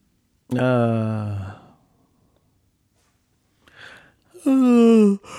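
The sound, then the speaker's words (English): A person yawns loudly, a long drawn-out groaning yawn, then a breathy intake and a second voiced yawn sliding in pitch. No words are spoken. “Sorry if you were driving when I did that and you're now yawning uncontrollably.”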